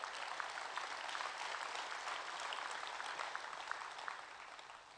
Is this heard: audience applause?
yes